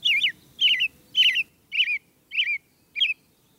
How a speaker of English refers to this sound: An American robin belts out its spring song from the top of a tree.